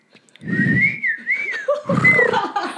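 A person whistles a wavering, sliding tune with their lips, close and fairly loud, in two phrases with a brief gap, over a low rumbling background.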